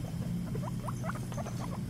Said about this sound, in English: Number four, rats.